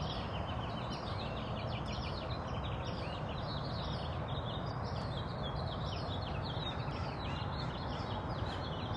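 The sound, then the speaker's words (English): A dense morning chorus of many birds singing and chirping at once at 5:16 in the morning, overlapping calls continuing steadily throughout over a constant low background hiss, with no one speaking. “But I was just struck by how joyous the birds are this morning.”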